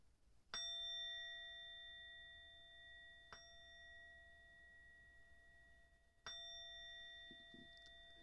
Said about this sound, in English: Allow your mind to dissipate, your body to become light with the sound of the bell. Let us begin our meditation.